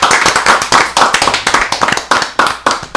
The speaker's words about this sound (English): Give a hand